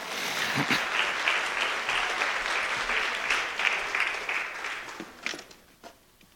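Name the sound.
audience round of applause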